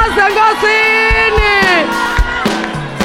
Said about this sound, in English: Your shouting is weak. You can do better than that. Come on, give the Lord a shout.